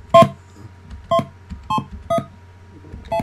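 Five short electronic dialing tones from blue box emulator software, dialing in numbers, beep one after another at uneven intervals, each a brief, bright two-tone blip, fairly loud with no voices.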